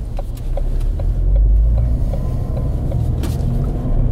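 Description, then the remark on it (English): A storm grey 1.6 litre turbocharged Ford Fiesta ST200 with a 6-speed manual gearbox accelerates through first, second and third gears, a loud, deep, sustained engine rumble that swells briefly in the middle, with no voices over it. “Ooh, very short geared in first. Plenty of grunt in second. Fruity sound in third.”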